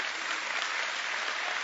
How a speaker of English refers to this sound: Okay, come on up here, young man. Y'all give our contestant a big hand clap.